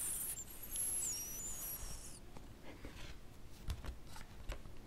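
Quiet papery rustling as a stack of picture cards, not in alphabetical order, is handled: a brief high sliding swish at first, then scattered light taps and flicks as the cards are shuffled through.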